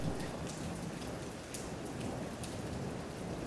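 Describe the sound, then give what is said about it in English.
Heavy, steady rain pours down during a thunderstorm, a constant hiss with scattered sharper drop hits and a low rumbling undertone. No one speaks. “I had a memory that I was just discussing with my wife the other day of being a very young and being in a room at night by myself in a thunder and lightning storm.”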